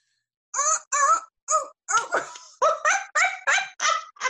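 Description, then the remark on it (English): A person imitates a seal's bark with a quick run of about eleven short, honking yelps, fairly loud, coming in a steady rhythm with no other talking. “What sound does a seal make?”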